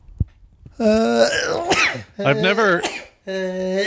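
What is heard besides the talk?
sneeze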